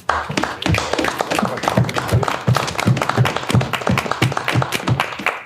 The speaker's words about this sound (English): As the players clap for Fish's stick